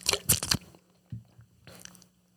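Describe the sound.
Wet mouth squelching: a loud cluster of smacking, slurping bursts, a brief low gulp, then another softer run of squelchy mouth noises, with no talking.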